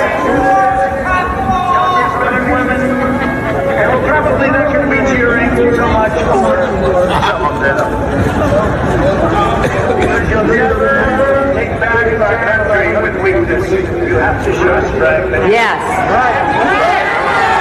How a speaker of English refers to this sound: So this is the perspective of the crowd far away from the Trump stage. And in the far, far distance, you can see the glass and everything behind him. And you can hear the audio, and you'll be able to hear to some degree how the crowd responds.